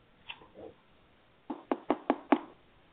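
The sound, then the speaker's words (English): Five quick, evenly spaced, crisp taps on the outside of a stall door, following a couple of faint softer knocks earlier. No one speaks. “the sound of tapping outside the stall door echoed along with the voice of Aaron”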